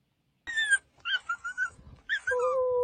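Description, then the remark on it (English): An abandoned dog in a TikTok video whimpers and whines in a series of high, wavering cries, a few short yelps followed by a long drawn-out whine, clear with no talking. “Now, what you're watching here is a dog that's been abandoned.”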